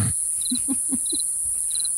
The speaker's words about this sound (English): Okay. You're giving the earthworm the crickets.